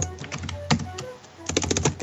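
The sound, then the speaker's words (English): Rapid clicking of keys on a computer keyboard, a cluster of taps, a brief lull, then another quick burst of typing, fairly clear with no voices. “Yeah, I hear some typing.”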